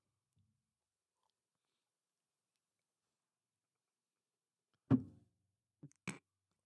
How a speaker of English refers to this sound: I'm going to try one more sip. Okay.